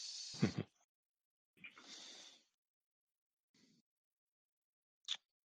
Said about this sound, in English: Roll the dice.